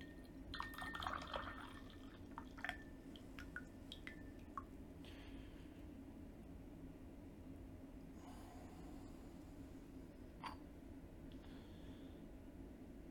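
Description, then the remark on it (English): Tea made from a mix of stems and leaves, steeped for one minute, pours from a teapot into a cup, starting with a few light ceramic clinks and splashes, then settling into a quiet, steady trickle. “Good, so let's pour this.”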